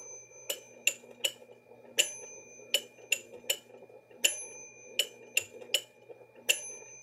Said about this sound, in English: And then as you can imagine, if I click the three, we're gonna hear 2 against 3 and a big bell.